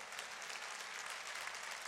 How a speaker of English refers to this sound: Oh, y'all ought to clap your hands on that one.